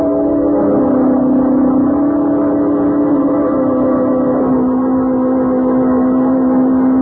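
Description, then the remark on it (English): A car engine drones loudly and steadily for several seconds, its pitch dipping slightly midway as it passes by. No voices are heard. “Stepped right in front of that car.”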